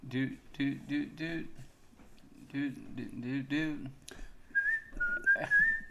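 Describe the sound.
A person whistles a short, bright pop song melody for a couple of seconds, following a few seconds of voiced, sung-sounding vocalizing.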